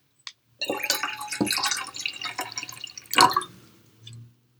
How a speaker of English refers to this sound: Pour some coffee and have a sip and get myself back on track.